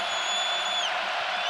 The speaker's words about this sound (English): Might be a lid buster, and the crowd's in it now.